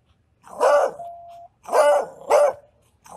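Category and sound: animal, dog barking and growling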